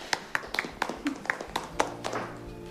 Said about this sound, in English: We have reached the end of our class period and the end of our classes. Big clapping for you guys.